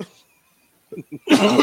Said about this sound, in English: Excuse me. Bless you, allergy man.